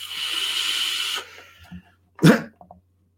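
A vape mesh coil fires with a steady, sizzling hiss for just over a second and then cuts off. After a brief quiet comes a short breathy burst, like an exhale.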